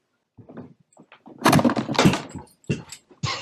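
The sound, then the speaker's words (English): A microphone gets knocked onto the ground after someone trips over its cord, producing a burst of loud rustling, thumps and clattering handling noise that comes in several uneven hits before stopping. “Tripped over the cord and knocked my microphone on the ground.”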